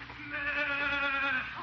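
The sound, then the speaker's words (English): A single drawn-out, loud bleat from a goat named Billy, a horned goat by an apple tree, wavering with a strong nasal buzz for well over a second before trailing off, with no other sounds around it. “Pretty sociable little goat.”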